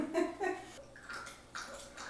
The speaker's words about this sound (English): Did you want me to aerate that for you? Well, I think you already did in the decanter, didn't you? Well, I poured it in the decanter, but we can always aerate it more with the aerator. Sure, go for it. Double aeration!